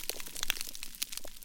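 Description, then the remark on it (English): Thousands of snapping shrimp on a coral reef clicking their claws make a dense, continuous crackling: countless sharp, bright clicks overlapping irregularly like frying fat, steady and fairly quiet, with no voices. “And they, as thousands of these shrimp are all clicking their claws together, it creates this sort of background crackling sound.”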